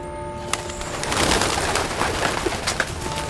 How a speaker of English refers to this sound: The big bell clanged in the church tower, and all the pigeons gossiping on the roof flew up in a violent state of nerves, as if the day of judgment had come upon them.